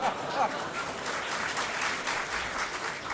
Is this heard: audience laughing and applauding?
yes